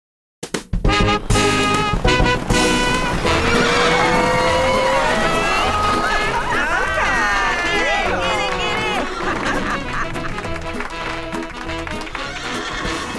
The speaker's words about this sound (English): Was that the king that drove his horse so hard against the steep uprising of the hill?